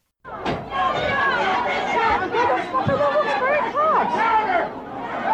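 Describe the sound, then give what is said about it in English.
A packed, screaming crowd in a store shouts and clamors all at once as a store manager standing on a table throws cardboard boxes into it. Many excited voices overlap in a loud, unbroken din with rising yells and a few dull thumps mixed in. “In this video that you're about to hear, a store manager stands up on a table above a screaming crowd, throwing cardboard boxes into the sea of people the way a bride might throw a bouquet.”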